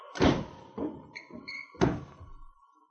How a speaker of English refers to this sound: Shut the door. We lock them in.